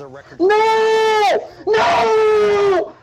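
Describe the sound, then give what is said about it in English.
A man screams "No!" twice, each cry long, drawn-out and loud, with a brief pause between the two shouts. “And he immediately starts screaming and he says, no.”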